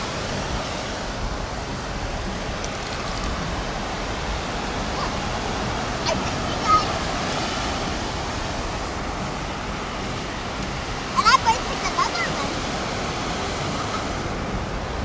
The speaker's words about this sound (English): Uh-oh, here comes the water.